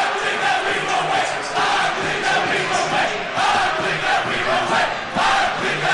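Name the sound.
fans cheering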